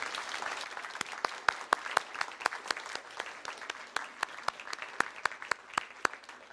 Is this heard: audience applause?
yes